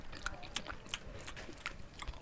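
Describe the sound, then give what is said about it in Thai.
Real biting mouth noises, not a stand-in, close to the microphone: a run of sharp, wet clicks and crunchy snaps in an irregular rhythm, loud and intimate with no talking. “จะเลือดออกวะ กัดจริงไม่ใช่สแตนด์อิน”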